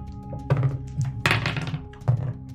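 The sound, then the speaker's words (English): Dice clatter and tumble across a tabletop in a few separate rolls for initiative, each a burst of sharp knocks and rattles, with a low steady hum underneath and no voices. “Let's see, I rolled a...”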